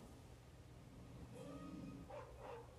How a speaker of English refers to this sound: Yeah, and then here's the dog.